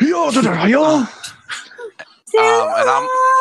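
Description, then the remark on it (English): A voice imitates grunts and moans: a long, wavering moan, a few short breathy grunts and gasps, then another strained, sustained moan, loud and alone with no words. “They're going to hear a bunch of grunts coming from him.”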